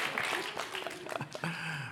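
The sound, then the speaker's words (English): A burst of crowd applause mixed with cheering voices, loud and steady for about two seconds, like a sound effect of an excited audience. “And the crowd goes wild.”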